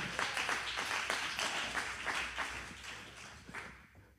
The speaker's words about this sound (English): I need somebody to clap their hands right now.